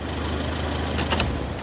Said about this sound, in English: Also, ask your adults not to leave the car running when they're just waiting.